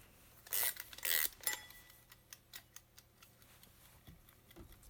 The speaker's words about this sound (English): Let's wind up the timer.